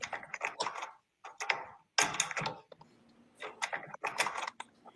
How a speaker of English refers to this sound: I was going to say locking the door. You guys are right. Actually, unlocking the door.